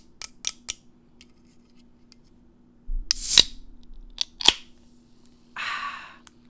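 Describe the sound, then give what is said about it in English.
A can of Coke being opened: a few light metallic clicks, then a sharp crack and hiss as the tab pops, another click, and a short burst of fizzing carbonation at the end. No one speaks. “I'm drinking Coke today. Let me just ASMR that shit.”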